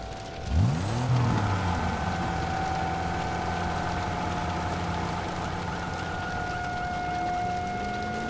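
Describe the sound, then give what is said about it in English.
The engine of a gassed-up getaway car revs up sharply once near the start, then settles into a steady, throbbing idle that runs continuous to the end, with no voices. “Getaway car is gassed up and ready to go.”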